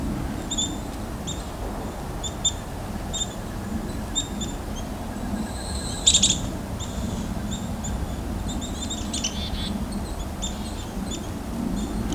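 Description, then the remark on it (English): Black-capped chickadees call repeatedly throughout, thin high-pitched notes coming in short clusters from several directions, over a steady low outdoor rumble. One brighter, louder burst of calls stands out midway. “They're fairly surrounded by chickadees here.”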